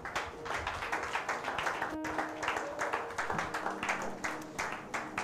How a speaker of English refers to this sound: Clap those hands for Jesus.